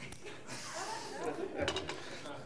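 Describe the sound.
A brief metallic jingle of keys flying through the air and being caught with the left hand during a church service, a quick bright rattle over a soft murmur of background voices.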